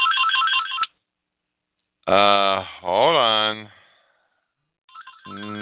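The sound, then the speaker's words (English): A phone ringtone plays a bright, repeating electronic melody, stops while a person briefly speaks, then starts ringing again, fairly loud. “No, I'm not answering the phone.”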